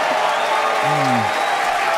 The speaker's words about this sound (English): As we promised, an exciting end to the Starship inaugural integrated test flight. It blew up, didn't it? Why are they clapping?